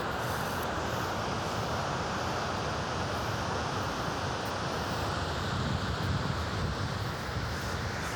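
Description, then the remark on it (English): A large waterfall roars continuously, a dense, steady wash of rushing water filling the whole clip at an even, heavy level, with no voices and no breaks in the sound. “If you keep going forward, you can actually be very, very close to the edge of the waterfall itself.”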